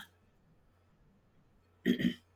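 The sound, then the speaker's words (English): After a stretch of near silence, a person with a sinus issue gives a short, forceful double cough-like throat clearing, fairly loud, with no talking. “And I'm coughing for some, because I developed over the last few years a sinus issue.”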